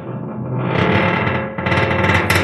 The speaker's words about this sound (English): It was a submarine creaking. God, that would feel awful.